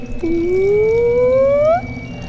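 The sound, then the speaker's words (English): Liquid pours steadily into a glass for about a second and a half, its gurgling tone rising in pitch as the glass fills, fairly loud, with no talking. “Gonna pour.”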